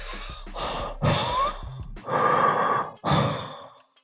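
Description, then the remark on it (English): Heavy, ragged breathing of a wounded dragon with a giant gash along its stomach, four long rasping breaths in a slow rhythm, fairly loud, likely a human voice imitating the creature's pained panting. “Looks at you with this like pained look in its eye, breathing heavy.”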